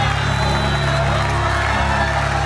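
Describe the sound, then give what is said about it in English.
An audience at a church service shouts and cheers unto the Lord together in a loud, continuous wash of voices, with a steady low hum running underneath throughout. “Shout unto the Lord.”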